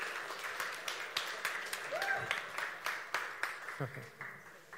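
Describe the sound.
A crowd applauds steadily, many hands clapping in a dense, sustained patter with sharper individual claps standing out, and a few voices murmuring and calling out underneath.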